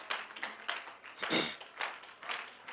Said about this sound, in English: Oh, can we clap our hands to the Lord right now? Hallelujah, hallelujah. Clap your hands unto Jesus.